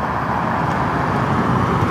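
A pickup truck towing a trailer rumbles along a sidewalk, its low engine drone and road noise holding steady and loud throughout, with no voices.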